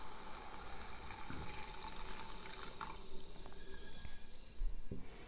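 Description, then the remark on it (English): Pilsner beer pouring steadily into a Collins glass with ice cubes, 40ml of Campari and sweet vermouth, topping up the drink: a continuous splashing and fizzing stream that rises slightly in pitch as the glass fills, with a few small clinks. “And we can just top that glass up with this.”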